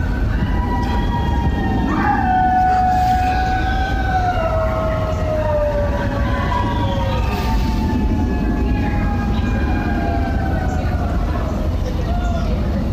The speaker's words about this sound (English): Walk out my front door, and the cult starts howling. Okay. 8 p.m. on the dot.